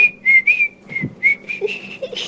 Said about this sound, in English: On you go, …, whistle for Daddy.